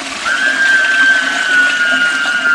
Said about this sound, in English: Wait, hold on. We can add an element here. Flush.